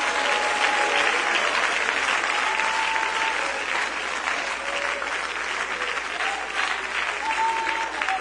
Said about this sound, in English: Can we just clap our hands unto the Lord for just a moment?